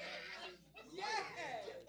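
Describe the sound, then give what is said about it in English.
A couple of wavering bleats like goats, quavering and nasal, rising and falling over about two seconds against a soft background hiss. “I just was trying to find some water for my goats.”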